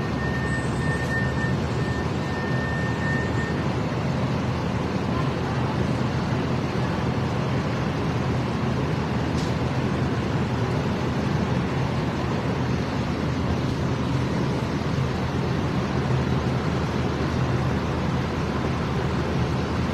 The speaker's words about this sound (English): Oh, here comes the fire truck again.